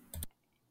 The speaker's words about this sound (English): I meant to mute because I was typing.